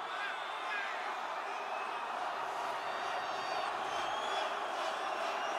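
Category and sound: crowd, rally crowd cheering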